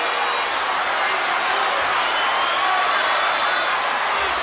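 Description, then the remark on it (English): A loud, sustained roar from a large wrestling arena crowd cheering as Randy Savage and the Ultimate Warrior get ready for their match. It is a dense wash of voices that stays steady and intense throughout, with no single speaker standing out. “Crowd's into it. Oh, yeah. Real loud.”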